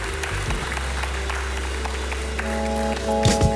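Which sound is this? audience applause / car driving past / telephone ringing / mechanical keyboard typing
audience applause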